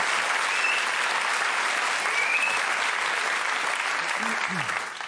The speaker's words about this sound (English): Can I have a round of applause for all of our people who've given us their stories so far?